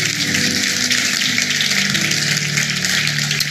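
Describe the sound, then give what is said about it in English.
An audience applauds its volunteers steadily for several seconds, a dense, even wash of many hands clapping at once with no single claps standing out and no voices over it. “Let's give all our volunteers a hand clap here before we go on.”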